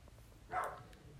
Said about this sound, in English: You hear that dog? Yo. Well, how does dog be wailing, bro? She's so small, voice so big, like.